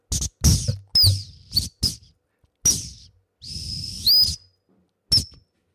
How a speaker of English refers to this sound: I just have me and my whistle, my trusty T12, on which I'm going to play you a tune.